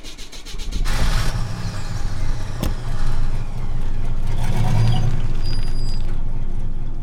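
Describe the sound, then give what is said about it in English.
A car engine rumbles steadily, with a brief sharp click near the start, as the vehicle pulls away and drives off over the hill. No one speaks. “Before I can parse his last words, he drives off over the hill, back into the haze of the past.”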